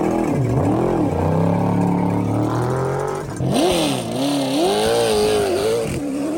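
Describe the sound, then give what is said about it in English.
Loud engines of different cars and trucks rev up and down in repeated surges, one vehicle giving way to another midway, their throaty pitch climbing and falling with each throttle blip, with no talking. “Come on, these are all different cars and trucks. Sounds awesome.”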